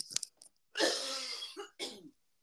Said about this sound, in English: And it's a bad cough too. It's not like a little. It's a hard cough.